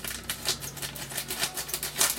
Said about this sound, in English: Listen to me trying to cut freaking plastic. This is me failing because the freaking scissors won't cut.